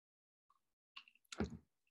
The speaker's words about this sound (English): Needed a sip.